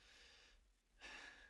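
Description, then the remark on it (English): A person demonstrates shallow chest breathing, breathing through the upper chest as under stress: two quick, airy breaths separated by a brief pause, with no talking. “Otherwise you're breathing like that and you can't keep up and it's horrible.”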